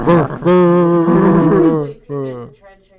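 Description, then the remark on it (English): A person loudly imitates a dog barking, letting out a long, drawn-out growling bark and then a shorter one, with a rough, roaring vocal tone. “We should just start out this episode barking.”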